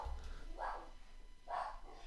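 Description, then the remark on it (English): Dogs bark twice, about a second apart, over a low background rumble, with no one speaking, while strong wind blows during a wind advisory. “Of course, the dogs are going crazy right now because we have a wind advisory for the next hour or so.”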